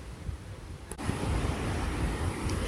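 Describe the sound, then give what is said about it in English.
Steady rush of ocean surf at Puerto Viejo, where it is sunny and hot, with gusting wind buffeting the microphone, a broad continuous roar that swells slightly partway through, no voices present. “I'm currently sipping a passion fruit margarita by the ocean and relaxing after a great morning.”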